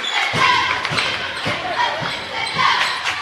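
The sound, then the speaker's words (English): Malik Pope dribbles a basketball on a hardwood court in between the circles during an Aggies game, about five sharp, evenly spaced bounces roughly half a second apart, over a steady wash of crowd noise and murmuring voices. “Malik Pope will dribble himself in between the circles, bounce it to Cruz, catch at the left elbow, off to Burns, and Burns walked before he took off to the bucket.”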